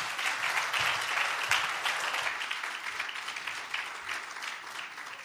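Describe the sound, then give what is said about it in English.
Steady audience applause for everyone in Costa Rica who was saved, many hands clapping together in a dense, crackling wash that holds fairly loud throughout and eases off slightly toward the end. “So just give a round of applause for everyone in Costa Rica who is saved.”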